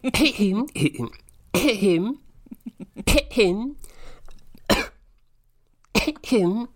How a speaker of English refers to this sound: I can, of course. I'll just clear my throat for this poem.